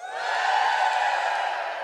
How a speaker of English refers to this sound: Are hats optional? Give me a cheer. Wow, that was feeble.